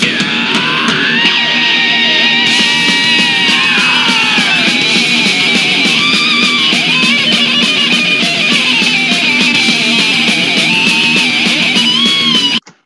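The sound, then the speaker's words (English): A loud, distorted thrash metal guitar solo wails and bends over a dense, driving band mix, playing continuously for about twelve seconds before cutting off abruptly. “Name that solo.”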